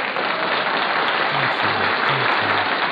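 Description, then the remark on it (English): A crowd applauding: a dense, steady wash of many hands clapping at an even, loud level for the full three seconds, with faint low tones briefly sounding underneath. “Here, have some applause.”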